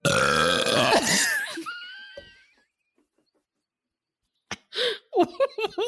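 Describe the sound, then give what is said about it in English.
A loud, drawn-out burp rumbles for nearly two seconds, rising to a raspy close, followed by silence and then a few short vocal exclamations. “That was an assault on my ears. I've never heard you burp like that before.”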